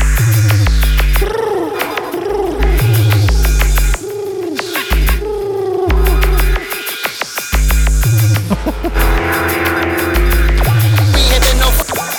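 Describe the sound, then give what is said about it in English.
Pigeon coos repeat in a steady rhythm over a heavy, thumping bass beat, the soft warbling calls looping loudly alongside the low-end pulses. “Pigeon bass.”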